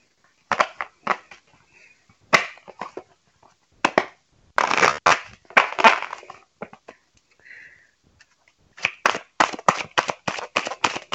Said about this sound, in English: I need to stop shuffling my decks like some poker cards and take it easy on them.